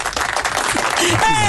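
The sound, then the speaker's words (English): A sound effect of audience clapping and cheering, dense and steady for about a second, then a single voice calls out loudly over the fading applause. “Like my sound, my sound effect of clapping.”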